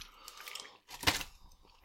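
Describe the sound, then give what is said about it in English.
Crunching and chewing of fried chicken: a run of crisp, crackly bites, with one loud, sharp crunch in the middle, then softer chewing. No talking. “This is like the platonic ideal of fried chicken.”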